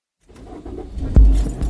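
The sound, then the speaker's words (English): A car engine turns over and settles into a low, steady rumble, with a sharp thud partway through and the idle swelling louder at the end, with no voices, as someone drives off in their car. “Before I knew it, I was in my car driving to his place.”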